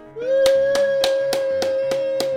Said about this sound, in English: Woo! I'll clap myself there.